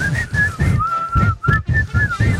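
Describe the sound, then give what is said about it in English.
Whistling of the bouncy, jaunty Globetrotters basketball theme tune, clear, with a steady rhythmic beat thumping underneath, like a ball being dribbled, and no talking. “I don't have the Globetrotter music. Oh, God. Because I know it's just whistling, oh, yeah, right?”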